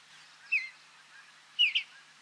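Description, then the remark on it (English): A Western bluebird gives short, soft cheer notes: one call, then a pause, then a quick doubled call, all high-pitched and moderately faint against a quiet, slightly hissy background. “the way I always think about it is the Western bluebird just says, cheer, cheer.”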